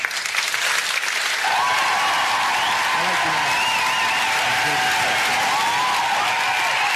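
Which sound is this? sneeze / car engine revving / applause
applause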